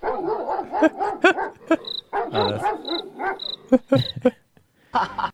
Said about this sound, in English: I'm looking for my dog barking sound. So well, I got one.